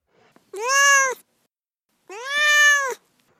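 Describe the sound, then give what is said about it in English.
Duarte, the speaker's cat, meows twice, two drawn-out, clear calls separated by a short pause, fairly loud with no talking over them. “Speaking of animals, let's move on to Duarte's corner, where my cat Duarte will share his opinions about the book.”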